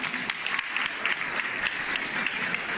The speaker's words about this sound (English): Give her a clap. Give her a clap for our sister. Stand up. Excellent. Give her a clap.